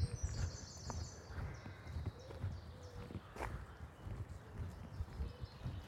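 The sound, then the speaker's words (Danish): Faint, high-pitched bird chirps and short song phrases, clearest at the start, over a steady low rumble with irregular thudding steps that sound like hooves clopping. “For selvfølgelig siger det fuglen en lyd af en eller anden grund.”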